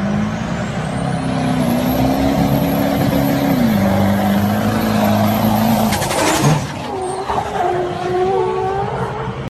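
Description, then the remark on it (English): A loud vehicle engine drones steadily, its pitch dipping as it passes, then a sharp burst of air-brake hiss cuts in before the engine settles into a lower rumble. “You know those cars? They just seem so non-polluting.”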